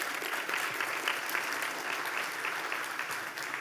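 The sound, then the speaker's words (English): A crowd claps steadily for volunteers for a few seconds, a dense, even patter of many hands with a bright, crackling texture and no voices over it. “Clap it up for my volunteers real quick.”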